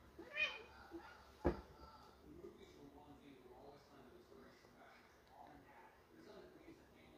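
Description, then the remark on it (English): A pet cat meows a couple of times near the start, fairly clear, followed by a sharp thump and then a low, muffled background of room noise and faint voices. “So, I got one of our kitties right here.”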